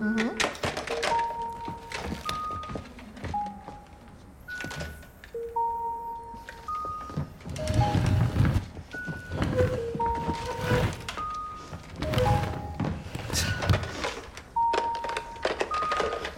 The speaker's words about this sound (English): So this is a great example of maybe some retro technology. Switches.